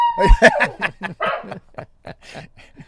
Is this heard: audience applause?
no